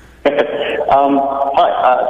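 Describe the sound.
A caller's voice on a live on-air call comes through a thin, band-limited phone line, sounding hollow and echoey as each utterance seems to repeat faintly behind itself. The talk is steady and fairly loud throughout.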